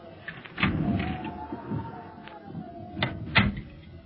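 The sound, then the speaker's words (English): A door opens with a drawn-out creak and a few clunks of the latch and frame, over low background rumble. “Here's another door.”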